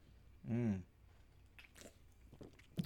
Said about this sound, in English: Let me take a sip.